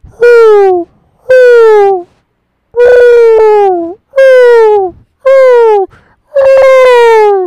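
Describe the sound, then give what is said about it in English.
A person imitates an owl with six loud, drawn-out hooting calls, each slightly falling in pitch, separated by short pauses. “Do you want to come give the owl hoot?”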